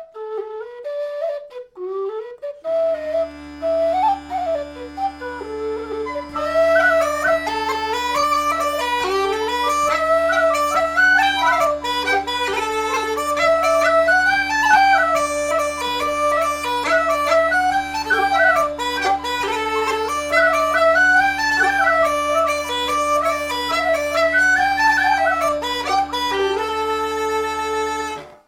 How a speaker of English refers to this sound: the weekly show where I explore the likely repertoire of 18th and early 19th century bagpipers using historic music collections, written for bagpipes or not, and played on Uilleann pipes, Highland pipes, and whistles. Let's hear some tunes.